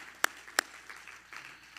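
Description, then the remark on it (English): A church audience clapping hands to the Lord: two sharp claps stand out early, followed by softer, scattered claps. Nobody speaks. “Everybody clap your hands to the Lord.”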